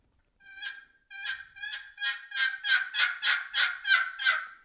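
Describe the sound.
A turkey call imitates a hen's yelp: about ten raspy, high yelps in a steady series, starting softer and growing louder and slightly quicker toward the end, with no talking.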